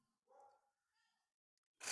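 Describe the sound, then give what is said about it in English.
Pet dogs bark faintly, one short yelping bark followed by a softer second one, before a sudden loud burst of noise cuts in at the end. “I think my dogs are losing their minds.”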